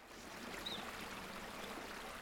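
flowing river water

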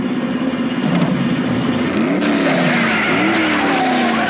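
car tires squealing

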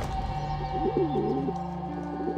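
pigeons cooing

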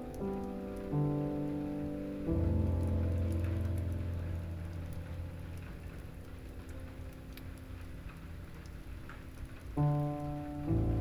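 gentle rain falling

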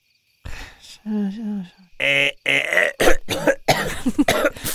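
dry cough

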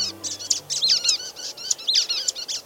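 brown-headed nuthatch calls

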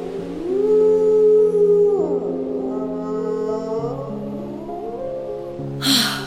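dog howling

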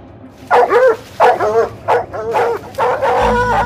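cadaver dogs barking

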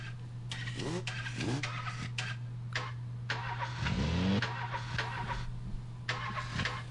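car engine starting

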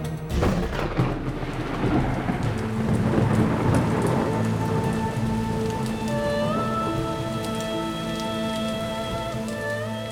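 rain

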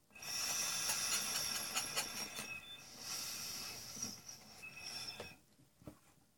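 train rumbling along rails

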